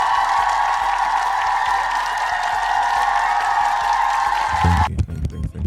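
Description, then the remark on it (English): A crowd applauds and cheers in a dense, steady wash of clapping and voices for about five seconds, then the sound cuts off abruptly, leaving a few low thumps. “You all should clap.”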